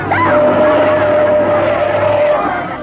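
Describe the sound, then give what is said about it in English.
A car engine roars loudly, a steady droning rush that holds for a few seconds before easing slightly, as the car approaches with its lights on along a narrow road, with a busy wash of background noise and commotion. “there's a car approaching.”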